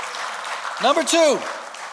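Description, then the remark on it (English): A sharp burst of clapping rises over a steady crowd murmur, while a voice lets out a rising and falling whoop at the same moment, then the noise settles back. “I got one big clap over there.”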